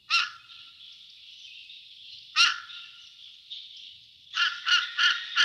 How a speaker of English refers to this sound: The second movement is a buffo section, featuring the unlovely voice of the fish crow.